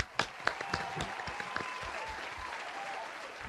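A small group claps, sharp irregular hand claps overlapping in a quick patter that carries on steadily, with faint voices murmuring beneath.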